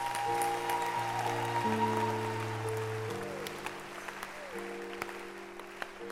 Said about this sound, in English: Can you clap your hands? Clap your hands.